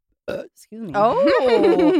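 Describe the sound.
A single short, throaty burp sounds up close, followed a moment later by people talking loudly over one another.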